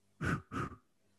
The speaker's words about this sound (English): The fire breath is two sniffs in through the nose, two puffs through the mouth.